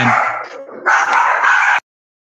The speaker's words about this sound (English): And we interrupt this program with a barking dog. Yeah, my pups. Sorry.